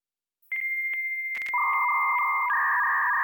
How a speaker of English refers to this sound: This tone is emitted by the receiving modem. This tone disables echo suppression, because if echo suppression was enabled, it could corrupt data.